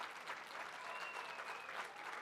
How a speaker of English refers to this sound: When you get married the night before and you come to church the next day, you deserve a round of applause.